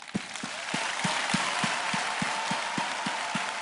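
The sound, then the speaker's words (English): An audience applauds steadily, a dense wash of many hands with a rhythmic beat of about three claps per second running through it. No one speaks over it. “I want to believe your heart is the one clapping. Who is clapping there?”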